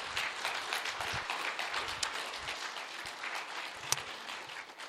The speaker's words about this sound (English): Applause for tonight.